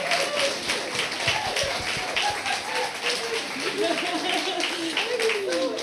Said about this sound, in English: Big round of applause for